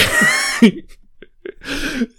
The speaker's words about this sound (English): Yeah. It's got cold. It's got, ooh, yeah. got a bit of a cough.